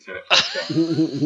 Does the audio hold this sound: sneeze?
yes